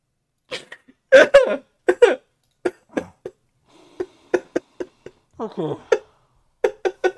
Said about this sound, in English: All I heard was a choking noise.